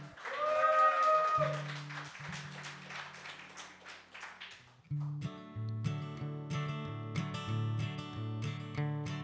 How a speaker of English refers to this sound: Can we have another round of applause